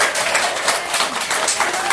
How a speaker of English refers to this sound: Small round of applause. Huge round of applause.